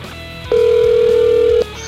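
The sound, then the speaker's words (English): A phone ringing on an outgoing call from a studio to Island Music Company: one steady electronic ringback tone lasting about a second, loud, starting and stopping abruptly over a faint background hum. “It's ringing, dude. It's ringing.”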